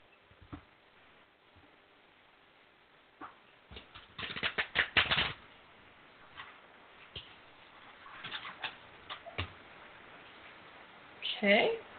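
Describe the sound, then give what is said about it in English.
A deck of cards being shuffled for a card reading, with quick papery riffling in several short bursts separated by quieter pauses, the longest flurry midway and a sharp final riffle at the end. “I'm shuffling. Tell me when to stop.”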